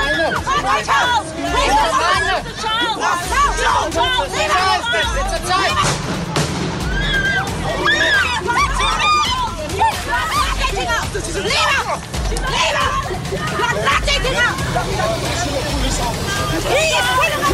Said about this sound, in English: there's a disturbing sound of shrieks of men and women screaming, and they're saying, it's a child, it's a child.